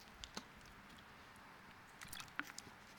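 Someone takes a quiet sip of water, with soft wet mouth clicks and a swallow scattered over about three seconds of near silence, no talking.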